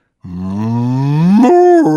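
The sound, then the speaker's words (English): A person does a single drawn-out imitation of a cow's moo, loud, rising steadily in pitch before breaking upward and dropping near the end. “That was the cow watching the guy get shot. Bad impression, but you get it.”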